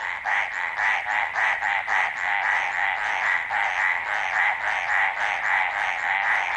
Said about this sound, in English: We leave you this week with the sound of a frog that keeps its head well above water. Carlos Davidson recorded these mountain tree frogs barking away in the Coconino National Forest in Arizona.